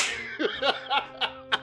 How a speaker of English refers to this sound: Slap for that. Oh, you get a slap for being vegetarian? No, everybody else do.